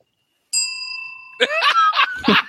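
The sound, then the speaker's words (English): A single bright bell strike rings out clearly, its tone lingering and slowly fading as voices start talking loudly over the tail of the ring. “I wish I had a bell. Oh, wait, I do.”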